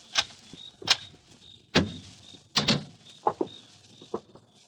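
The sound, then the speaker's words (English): A door is unlocked and opened: a series of sharp clicks and clunks from the lock and latch, spaced irregularly over a few seconds, with a faint high whine in the background and no voices. “Open the door, Ruth. Hurry.”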